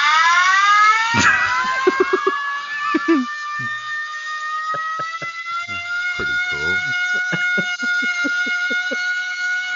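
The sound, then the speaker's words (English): A hand-cranked air raid siren wails loudly and continuously, its pitch sweeping then holding a steady drone, while people talk over it in short bursts. “It was an air raid siren, and it was a hand cranked one.”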